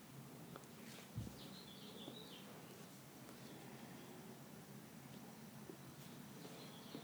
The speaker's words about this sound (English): And there's the birds. Just pretend that that's the kind of birds that chirp at night.